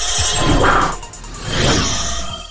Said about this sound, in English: I don't know what it is. It feels more official when there's a swoosh thing in the beginning. It's like, swoosh. Now it's real. I saw it on TV. This is how they start TV shows.